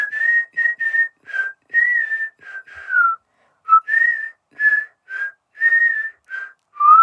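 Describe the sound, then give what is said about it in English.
A human whistle imitates nightingale song in about a dozen short, warbling phrases, some gliding downward, bright and mid-high in pitch, separated by brief pauses with no talking. “I shall sing even better than before, and you shall see I'm far better than this replica.”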